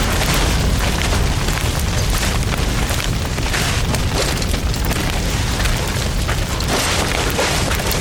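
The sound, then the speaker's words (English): Gas pumps that a man set on fire explode into flames with a loud, continuous booming roar that holds steady for several seconds, dense and rumbling with crackling hiss, and no voices. “He set the gas pumps on fire.”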